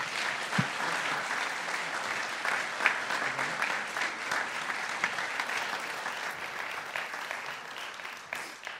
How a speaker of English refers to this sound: So, why don't you give them a round of applause? Thank you.